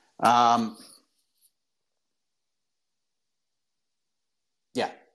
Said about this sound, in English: but now he's got his voice and just barks at everything. It drives me crazy. So like every single show I've done this year, he has barked at some point for no freaking reason.